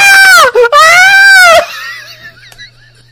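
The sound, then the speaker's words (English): A cartoon Morlock character lets out a loud, shrill scream in two close bursts, the second longer and wavering in pitch before cutting off, leaving only a faint trailing noise. “The Morlock scream person?”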